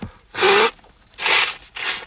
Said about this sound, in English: Give me a second, I got to blow my nose.